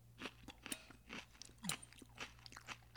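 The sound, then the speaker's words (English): Crunchy salad being chewed, with a steady series of crisp, irregular crunches and wet bites over a low background hum. “You guys always remember to chew your salad thoroughly.”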